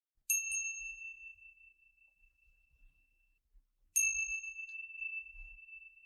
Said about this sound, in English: Now wiggling your fingers and wiggling your toes, and when you hear the sounds of the chimes, coming back into this space.